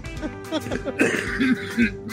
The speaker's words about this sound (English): Cough my lung out. Yeah. Get a drink of water.